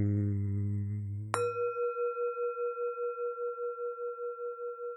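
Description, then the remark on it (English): A low, rich tone fades out, then a bell is struck once, clear, to start a meditation, leaving a long sustained ring that pulses with a slow, steady wobble as it gently decays. No one speaks. “We're going to probably have a bell in here just to start to get yes. the vibe going.”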